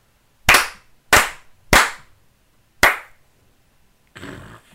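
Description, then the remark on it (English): Four sharp, loud hand claps, three in quick even succession and then a short pause before the fourth, followed by a brief soft rustle. “You ready for my claps?”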